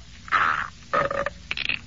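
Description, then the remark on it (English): A silly sound effect plays for chewing a Luden's cough drop: three short squeaky, croaking bursts, the last one higher-pitched, with no talking. “Should we engineer Luden's cough drops so that they make embarrassing sounds when you chew one, like this?”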